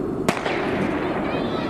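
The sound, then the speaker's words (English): A starting gun fires at the start of an Olympic race: a single sharp gunshot crack rings out over a noisy crowd, followed by a brief echoing tail as the background murmur continues. “Yeah, starting gunfire.”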